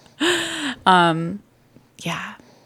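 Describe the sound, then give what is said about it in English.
A sleeping baby boy snores: three breathy, slightly voiced snoring breaths, the first two back to back and the third after a short pause, with quiet in between. “And if you can hear him snoring”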